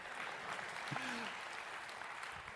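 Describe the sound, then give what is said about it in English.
An audience at a church service claps steadily after hearing that students from Dakar Academy brought revival to the region: a dense, continuous wash of many hands with no clear rhythm, fairly loud throughout. “And he said, in this, since they, yes, you can clap.”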